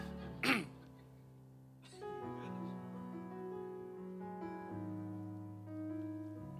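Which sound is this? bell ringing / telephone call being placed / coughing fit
coughing fit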